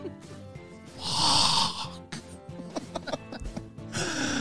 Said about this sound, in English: Well, stop coughing.